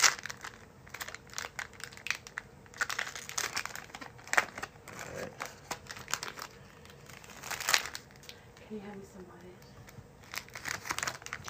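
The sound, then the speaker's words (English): Crisp plastic wrapper of a Pokémon Celebrations trading card pack crinkling and crackling in irregular bursts for several seconds as it is opened, with a brief tearing rustle and faint murmured voices in the background. “Opening Pokémon wwe nba”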